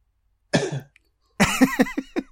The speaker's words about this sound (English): You're the one person during the moment of silence who just can't keep that cough in. Yep, that's it.